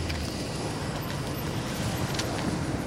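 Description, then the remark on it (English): A Hummer and a patrol car race along the road from around the corner, a steady, loud roar of engines and tire noise with no voices, the rumble holding strong throughout as they race closer. “From around the corner, a Hummer and patrol car came racing towards us.”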